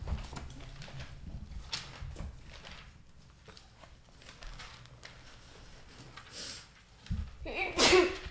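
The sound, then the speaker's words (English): A single sharp, loud sneeze bursts out near the end, during a Bible study group, after several seconds of quiet background noise with faint shuffling and low murmurs. “Bless you. Bless you. Thank you.”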